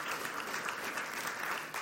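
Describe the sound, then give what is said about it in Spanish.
An audience breaks into steady applause for God, many hands clapping at once in a dense, even wash of sound that holds for a couple of seconds. “Yo creo que Dios se merece un aplauso, ¿verdad?”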